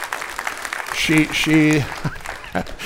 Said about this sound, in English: Let's give the first lady of the church a great big round of applause.